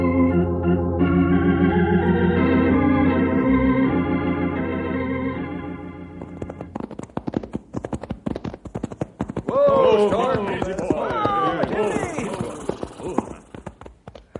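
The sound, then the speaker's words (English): Sustained orchestral music plays, then gives way to a steady, brisk clip-clop of horses' hooves as riders head out to a canyon, continuing to the end, with a brief stretch of voices or whinnying over the hoofbeats. “Fellas, let's saddle up and go out to the canyon and do our own sleuthing.”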